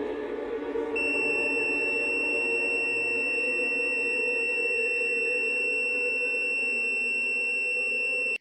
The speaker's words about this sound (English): And they start like covering their ears. It creates this like high ass pitch.